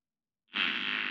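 A single loud, raspy fart bursts in abruptly after a moment of silence and holds steady, buzzing and hissy, until it cuts off. No voices accompany it.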